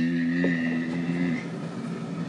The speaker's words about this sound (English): The kettle is boiling for me.